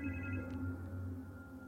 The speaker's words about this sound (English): I remember just as I was about to go back upstairs, the phone rang.